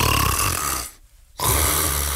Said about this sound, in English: This man's snoring has been likened to the sound of a rusty chainsaw, which is a little ironic.